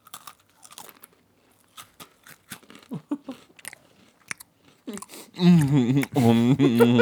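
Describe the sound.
Crunchy snack chewing right up close, a string of sharp, irregular crisp crunches for several seconds, followed by a loud, close voice that drowns out the last bites.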